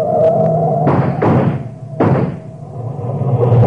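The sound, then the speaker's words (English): A car being chased toward a ranch road crashes and turns turtle, rolling over: three heavy, crunching impacts in quick succession over a steady low engine rumble, with no voices. “Hey, they turn turtle.”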